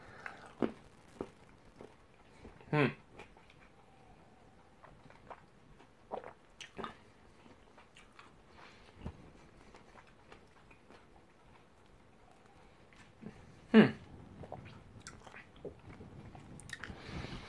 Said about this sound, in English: By the way, sorry for the moaning noises. It's just kind of like me chomping and chewing.